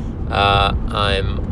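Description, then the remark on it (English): A steady low engine hum rumbles through the whole stretch in a truck cab while driving to a work job. Two brief, tonal voice-like sounds rise over the drone partway through. “So, as you can maybe tell from the humming, I am back in a truck, baby.”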